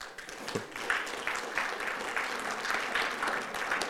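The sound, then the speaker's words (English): An audience claps steadily for a few seconds, a dense, even patter of many hands at moderate loudness with no voices over it. “I didn't really mean to get applause on that one, but thank you.”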